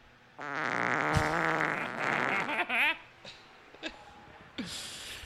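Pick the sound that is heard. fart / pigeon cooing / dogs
fart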